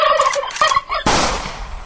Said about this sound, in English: Turkeys.